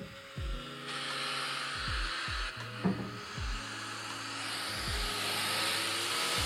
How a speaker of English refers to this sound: Bro, what in the lawnmower? Wait, that is a literal lawnmower. It's on a dyno.